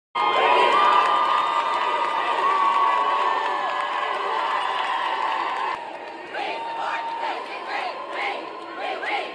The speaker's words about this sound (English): The visitors' gallery exploded in screams and boos following the final vote.